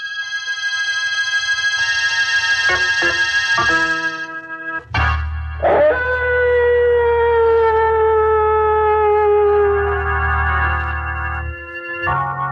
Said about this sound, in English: And wait till you hear those howling dogs.